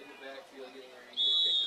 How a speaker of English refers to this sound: Westwood doesn't have anybody deep to go return it, and we get a whistle timeout. And a timeout called.